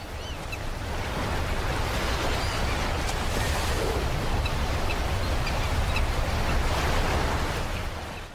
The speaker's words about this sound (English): Anyway, here's some seagulls.